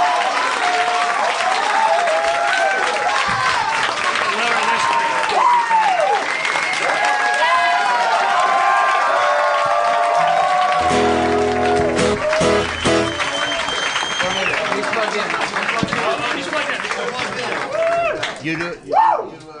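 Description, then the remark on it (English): A large crowd at a live comedy show applauds and cheers loudly as a surprise musical guest act comes out, dense clapping layered with whoops and shouted voices, holding steady for most of its length before thinning out at the very end. “Hear you applaud.”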